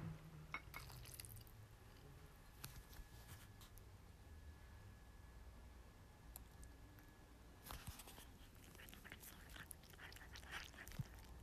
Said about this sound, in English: Let me pour some water there for you. Here.